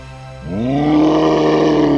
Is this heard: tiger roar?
yes